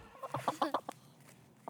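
Four backyard hens in St. Charles, Missouri, cluck in a quick run of short, pulsing calls, followed by a quieter pause and one last brief cluck, with no one talking.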